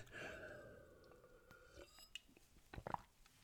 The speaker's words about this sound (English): Just have a sip of my juice, not coffee this time.